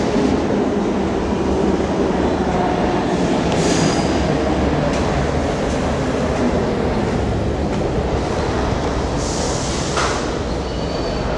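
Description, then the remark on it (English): A train rumbles steadily, a loud continuous roar of wheels on rails with occasional bright squeals and hisses rising above the din, no voices. “New York City Light podcast or not, I need my train.”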